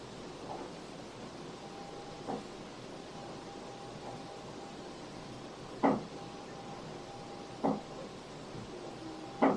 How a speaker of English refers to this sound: You can hear the knocking go from quiet to louder.